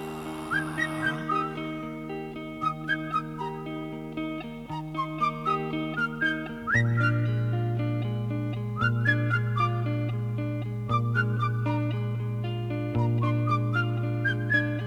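Shrill whistles made with fingers in the mouth rise and swoop repeatedly over steady, rhythmic band music, sounding loud against the sustained low notes of the accompaniment.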